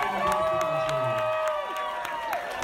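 An audience applauds and cheers, with steady dense clapping and sustained high whoops and shouts that slide downward in pitch, fairly loud throughout.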